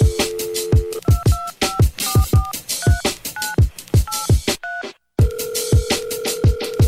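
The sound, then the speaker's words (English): A steady phone tone gives way to a quick run of touch-tone keypad beeps dialing a number, then a sustained ringing tone, all over a thumping, punchy beat with no talking. “The only thing I'ma give you motherfuckers is a dial tone.”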